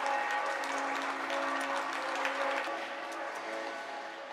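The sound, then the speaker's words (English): Many residents in Italy applaud from their balconies, clapping together in a dense, continuous, echoing wave of applause spread across an open outdoor space. It holds steady throughout with no talking. “In Italy, a lot of the applauding residents on their balconies are standing next to posters painted with Italian flags or giant rainbows.”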